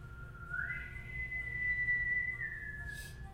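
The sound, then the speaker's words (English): A dragon whistle sound effect: one sustained, clear whistle tone that slides up, holds steady for a couple of seconds, then dips slightly before cutting off, over a low background rumble. “Load the dragon whistle.”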